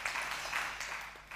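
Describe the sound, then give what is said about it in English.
An audience clapping as a clap offering for a mother in Israel, a dense, steady wash of many hands sustained throughout with no single claps standing out and no talking over it. “Come on, give a clap offering for our dear mother in Israel.”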